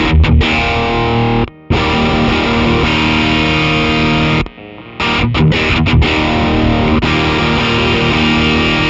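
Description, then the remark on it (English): Loud, heavily distorted Jazzmaster electric guitar with single-coil pickups ringing out an E chord, sustained and dense with buzzy overtones, cut off briefly twice before crashing back in. No voices. “It's funny, like it's just the jazz master, like I don't know, single coils with distortion sounds really cool, but I'm like, it can also get away from you real quick.”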